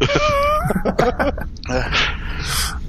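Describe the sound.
A man off-mic gives a strained, groaning voice that turns into a few harsh coughs and throat clearing, fairly loud, in rough bursts over a couple of seconds.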